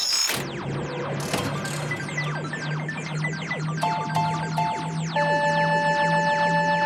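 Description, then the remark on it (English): A randomizer sound effect, started by pressing a big red button: a rapid ratcheting clatter of many quick clicks, like a spinning wheel winding down, over a steady low hum, ending with a few bright sustained electronic tones. “I'm going to fire up the good old randomizer and find out what it is we're going to be enjoying next time around in the police box.”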